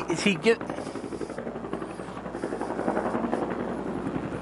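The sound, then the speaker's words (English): A helicopter passes overhead, its rotor thumping in a steady rapid rhythm that stays fairly loud and continuous throughout, with a brief burst of voice near the start. “pause for a second for the helicopter.”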